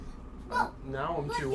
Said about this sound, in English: Bless you, sir.